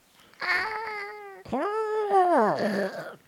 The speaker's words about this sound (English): A little muted toy sound of a monster roaring. Yep. They all have different sounds. They do have different sounds.